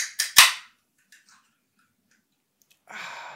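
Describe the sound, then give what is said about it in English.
A sparkling water can being opened: two quick sharp clicks and a louder crack, then a pause before a steady fizzing hiss rises and keeps going to the end. “That's bubbly sparkling water.”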